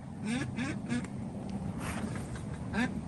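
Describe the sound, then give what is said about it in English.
Several ducks quack in quick, repeated bursts with a short pause mid-way, as they are let out in the morning, over a steady low outdoor background with no voices. “There go the ducks.”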